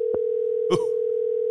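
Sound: phone dial tone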